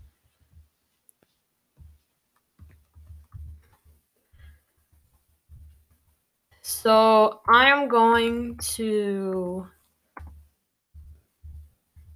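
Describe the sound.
Soft, irregular tapping of keys on a computer keyboard as a man types on his computer, quiet, pausing briefly while he speaks a few words in the middle.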